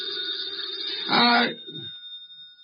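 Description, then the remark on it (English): A telephone rings with a steady, shrill electric bell tone that carries through the whole moment, while a voice briefly speaks over it partway through. “The phone.”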